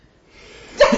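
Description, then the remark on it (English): A single sneeze: a rising, breathy intake builds for about half a second, then breaks into a sharp, loud, explosive burst at the end. “I'm going to sneeze. Don't sneeze on me!”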